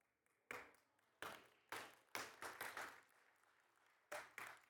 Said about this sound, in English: Now you clap when you see that.